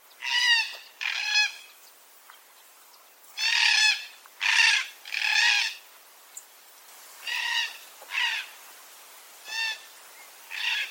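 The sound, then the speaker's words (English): Southeastern red-tailed black cockatoos call repeatedly in flight in South Australia, harsh, rolling cries arriving in loose pairs and bursts, loud at first and slightly softer toward the end, with no voices. “To give you a quick idea of what these birds sound like, here's Eddie Smith's recording of the southeastern red-tailed black cockatoos in flight in South Australia.”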